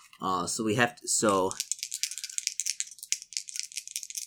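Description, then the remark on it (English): Dice are rolled for a luck saving throw, rattling rapidly for nearly three seconds in a dense, uneven clatter of sharp clicks, starting just after a brief stretch of someone talking. “I have to make a luck saving throw.”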